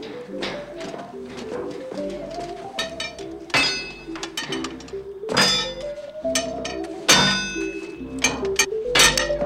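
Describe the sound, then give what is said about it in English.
A hammer rings against metal in a foundry during forging, in a series of sharp, loud clangs, struck irregularly about a dozen times with bright metallic ringing after each blow, over a steady low background hum. “Hey, you're the one who's forging.”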